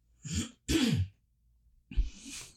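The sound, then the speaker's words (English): Three throaty coughs in quick succession, each a short harsh burst with a breathy hiss, loud, separated by brief silences and with no talking. “One of your fellow bunnies said that they missed hearing me cough.”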